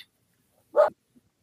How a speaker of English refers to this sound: I hear you, dog. Oh, yeah. Sorry about that. He's barking.